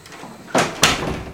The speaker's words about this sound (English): So I'll go out the front door again.